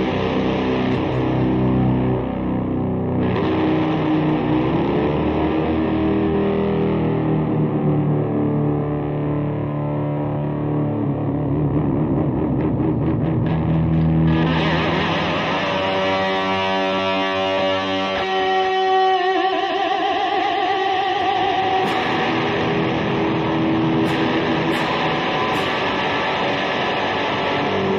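A heavily distorted electric guitar, played through a DoD Bone Shaker distortion pedal, plays sustained, crunchy chords and riffs at a steady loud level, with a thick saturated tone and some swirling effect in the middle section. No one speaks.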